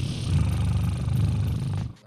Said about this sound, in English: Sorry, my kitty got excited.